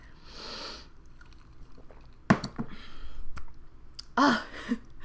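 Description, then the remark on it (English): An airy slurp from someone sipping a drink, followed by a soft clink and a brief swallow or breathy exhale, with no one talking. “I need a sip. We got to do a drink check.”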